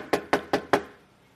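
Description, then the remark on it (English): Four firm, evenly spaced, sharp knocks on a door, followed by a short fading tail and then quiet. “If I was Jesus resurrected, I'd be knocking at Pilate's door.”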